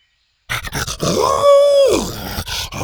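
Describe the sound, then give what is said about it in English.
A dog named Buck lets out a short, excited howl, a rising then falling wavering note, preceded and followed by snuffly grunts and yips. “Buck howled excitedly.”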